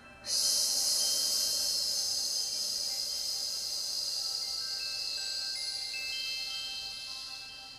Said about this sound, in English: And I'm going to cue you to go into that snake breath, breathing in through your nose, out through your mouth.